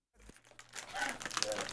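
A snack wrapper crinkles in the microphone, a dense crackly rustle that builds and continues steadily, loud and right against the microphone.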